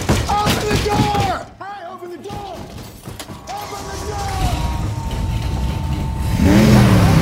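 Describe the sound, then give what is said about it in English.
A very expensive race car, built by Carroll Shelby's team and driven by Carroll Shelby giving Mr. Ford an impromptu fast ride, roars at high speed, its pitch climbing and dropping through repeated gear shifts, loud, with a brief lull before the revving builds again alongside muffled voices. “Carroll Shelby surprises them and gives Mr. Ford an impromptu ride in his very expensive race car and kind of gives him the ride of his life.”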